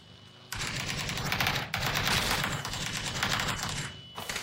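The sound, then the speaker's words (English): Video game gunfire: a loud, sustained burst of rapid automatic shots rattling on for about three and a half seconds with a brief break partway, then fading out. No one speaks. “They shooting at you, bud?”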